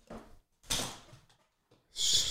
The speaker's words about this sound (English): I have my desk in stand-up mode. Pretty big. And I'm kneeling on my chair. Oh. So you see I'm swiveling. Interesting.